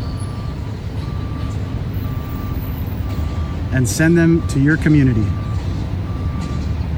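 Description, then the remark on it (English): A large tour bus idles with a deep engine rumble as it comes in to be loaded, while a steady reversing alarm beeps at regular intervals. A man speaks briefly partway through. “Got this bus coming in now.”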